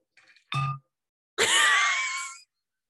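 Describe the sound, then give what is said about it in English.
A heavy 64-ounce tin water bottle, being picked up, clangs twice: a short clank, then a loud, gong-like strike that rings with sustained metallic tones for about a second before cutting off. “The way it sounded like a gong. I bought a 64 ounce tin water bottle that is heavy as hell, girl.”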